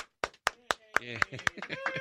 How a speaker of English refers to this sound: Yeah. You clap and yell for yourself. Awesome. Yeah, that's not weird at all.